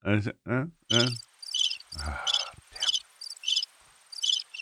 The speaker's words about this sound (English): That joke was really bad because they're still going. Still going. I can't stop the crickets once they start.